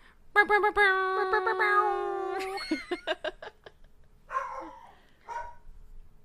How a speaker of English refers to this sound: Those are my hellhounds. Those are my dogs because it's Halloween Edition.